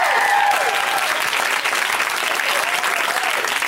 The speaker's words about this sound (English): Cheer for this person!